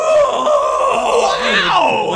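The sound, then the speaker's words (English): A single voice imitates an awestruck crowd screaming, a loud, sustained wail lasting about two seconds with pitch that sweeps up and down, partly groan-like. “And I imagine, like, since they're just so, like, overtaken by, like, the awe of the sweater that it's making them throw stuff, they're probably, like, audibly screaming things, too.”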